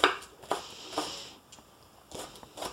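A knife chops an onion on a cutting board: about seven crisp, fairly quiet taps in an uneven rhythm, each with a short scraping tail, and no voices.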